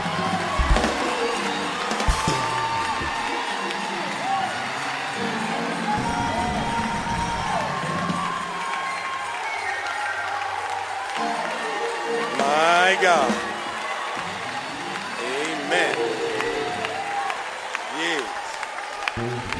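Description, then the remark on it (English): A crowd claps and cheers steadily, with whoops and shouted voices rising over dense applause that holds at a fairly even loudness throughout. “Clap loud enough, he may sing just a few, just a little bit.”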